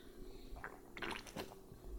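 A short, wet slurping sip of Boneyard beer, 6.5%, with a couple of soft liquid squishes and a faint swallow over low background hum, no talking.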